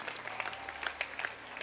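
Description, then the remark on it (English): A crowd claps for Ghanaians, a steady, dense patter of many hands with a few sharper slaps standing out, sustained at an even moderate level with no voices over it. “Clap again for Ghanaians.”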